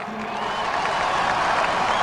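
A large crowd at an inauguration speech at the Capitol applauds a line of the speech, heard from a couple hundred yards away: a steady, dense wash of clapping mixed with a faint cheering murmur, holding at the same loud level for about two seconds with no speech on top.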